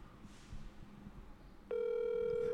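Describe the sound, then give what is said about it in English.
An outgoing telephone call ringing: after a few seconds of low, muffled background rumble, a loud, steady electronic ringing tone starts abruptly and holds at one pitch to the end. “All right, here we go. I'm calling it.”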